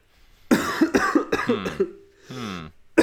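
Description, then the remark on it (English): Several sharp coughs in quick succession, followed by a drawn-out, voiced throat clearing with a rough, gravelly hum, then one more cough at the end. “I'll use this time to cough. Clear my throat.”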